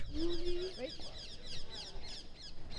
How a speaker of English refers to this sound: These are the Roman... I call them parrots. They're technically monk parakeets, but they're big enough to be parrots, and they're bright green with long tail feathers, and they have invaded the city.